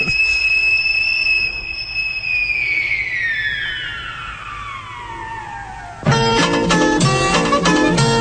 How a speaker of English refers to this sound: Everybody, we must be getting back. We mustn't be late for the 6 o'clock whistle.